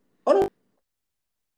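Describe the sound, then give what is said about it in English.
A single short, sharp sneeze bursts out, a quick voiced gasp snapping into an abrupt burst, then silence with no talking around it. “Oh, bless you.”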